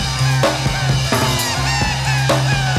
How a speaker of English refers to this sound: Nice little silly fun break, and you got some seagulls in there.